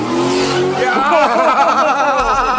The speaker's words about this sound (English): And, yeah, she was way too close to a car doing donuts.